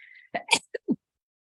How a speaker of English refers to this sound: I just sneezed.